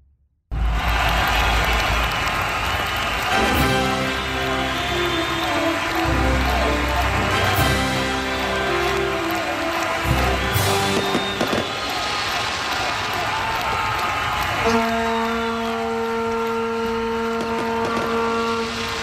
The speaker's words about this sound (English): The wind sounds very exciting. Like the opening for the Olympics. Fireworks. Vuvuzelas.